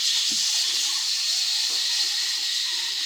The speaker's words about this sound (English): The only thing left is an aerosol can labeled instant fog. Spray it. Spray it. Be more specific. I spray it at the chair so we can see the laser lines and duck between them.